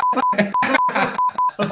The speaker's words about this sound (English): Yes, the beeps are necessary